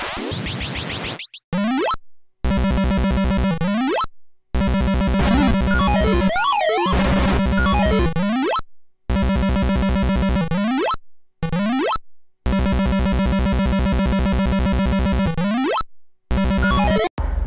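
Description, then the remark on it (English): A loud, harsh electronic whine of drones descending back onto a property, buzzing harmonic tones broken into choppy bursts with abrupt silences and occasional rising and falling pitch sweeps, with no voices. “You can hear that noise that is our drones descending back upon your property.”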